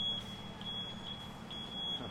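A delivery truck's high-pitched warning beep repeats steadily, roughly twice a second, over a low, constant engine rumble, with no one speaking.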